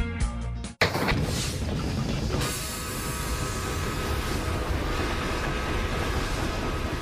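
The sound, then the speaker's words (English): A train rumbles past, a loud, steady roar of wheels and clatter that holds for several seconds after a brief burst of another sound cuts off at the start. “Now, ladies and gentlemen, boys and girls, sports fan, Christmas goers, you figure out what the theme is tonight. Yes. Trains. That's exactly right, trains.”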